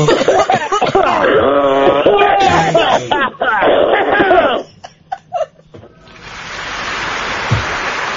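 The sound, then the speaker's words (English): Several people make loud, strained vocal noises with laughter mixed in during a coughing contest round of a game show, then a few sharp, separate cough bursts ring out before a steady hiss of noise takes over. “Oh, no, it's the coughing round. It's the coughing round. Who can cough the hardest?”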